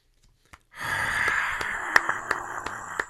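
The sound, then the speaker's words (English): A slow clap: sharp, evenly spaced hand claps about three per second over a steady hissing wash, after a couple of isolated claps at the start. No one speaks. “I know the slow clap.”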